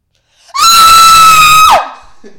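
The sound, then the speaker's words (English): A single loud, piercing human scream held steady for over a second at a high pitch, then breaking off with a downward slide, alone with no talking. “Do you want me to scream?”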